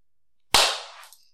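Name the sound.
hand clap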